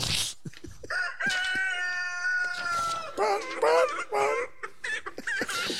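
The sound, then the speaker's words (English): A voice imitates a chicken, breaking into a long drawn-out crow followed by a run of warbling clucks, loud, with short bursts of sound scattered around it. “So do we want to do that now, or do we want to have the chicken do her thing?”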